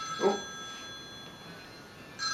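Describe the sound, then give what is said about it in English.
A telephone rings once in a short, faint burst, its bright electronic tone lingering briefly over a quiet, steady hum with no one speaking. “I like the fact that you turn that phone over and it just doesn't ring.”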